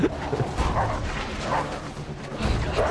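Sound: small dog barking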